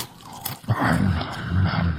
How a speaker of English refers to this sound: I can literally hear you chewing.